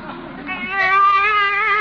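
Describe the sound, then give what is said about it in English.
A baby inside a car cries in one loud, drawn-out wail that rises in pitch and swells partway through, heard on its own. “A baby! Hey, what are you doing in my car?”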